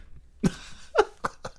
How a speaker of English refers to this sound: It sounds like the most fake coughing. Like, but of the way I cough.